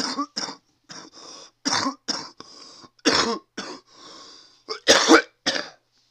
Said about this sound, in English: You might say, yeah, keep smoking and you can keep fucking coughing. Actually, the coughing is what's helping get some of the shit out of my lungs, so I'm gonna keep fucking smoking.